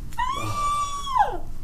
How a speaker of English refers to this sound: You hear a woman scream come from the cart that just caught fire.